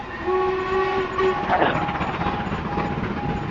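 A steam train rumbles along steadily, with a drawn-out whistle sounding over the noise at the start and fainter whistle tones continuing afterward, fairly loud and close, with no talking.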